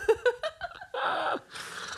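A coughing fit: a few quick, voiced, laugh-like bursts give way to two longer, harsh, raspy coughs with strained breathing. Fairly loud, and there is no speech.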